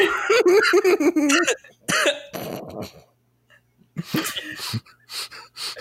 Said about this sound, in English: Oh my God, I can't stop coughing.